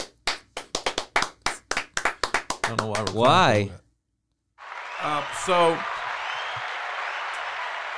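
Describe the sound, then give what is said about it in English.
Steady rhythmic hand claps give way to a rising voice, then after a brief pause a dense, sustained wash of audience applause in a standing ovation continues to the end, with voices briefly speaking over it. “Ladies and gentlemen, that's another standing.”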